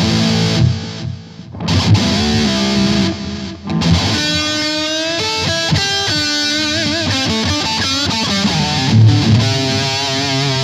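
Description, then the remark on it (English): A distorted electric guitar, played through a Metal Zone distortion and a DD3 delay pedal set to a fairly generic echo, plays a chunky riff and then a run of sustained lead notes, each phrase trailing off in repeating echoes, loud with no talking. “I just dialed the knobs here to where it sounds like a fairly generic echo. Here's with the delay.”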